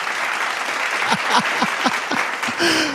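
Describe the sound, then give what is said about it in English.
A steady burst of clapping, dense and fairly loud for the whole stretch, with a handful of sharper individual claps standing out against the continuous patter. “Oh my gosh, you have clapped.”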